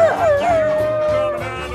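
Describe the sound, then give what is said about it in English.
A voice imitates a horn with one long, wavering tone that slides down at the start and then holds steady, sounding fairly loud, with no other talking. “You just can't commit to a horn sound.”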